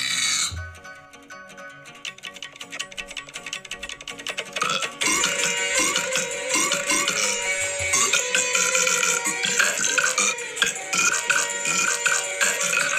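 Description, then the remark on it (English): Loud, drawn-out belching set against bright, dense music, growing fuller and more intense about halfway through and continuing steadily to the end, with no talking. “Start belching out Christmas number one.”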